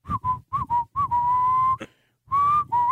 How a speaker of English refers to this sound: I'm only able to whistle blowing air in, not out. That's so odd. Interesting. Yeah, which limits the ability to whistle the length of the whistle. Yeah, you know, it's like. See, that's me. You whistle?